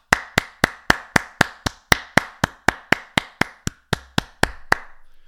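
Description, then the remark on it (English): Steady, evenly spaced hand claps, about eighteen sharp slaps in a brisk rhythm, fairly loud and with no voices, ending with a slight lingering ring after the last clap. “They do, and let's just give a round of applause for Dumbledore's army.”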